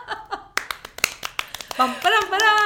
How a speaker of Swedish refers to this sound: Ja, tack för applåden. Det värmde.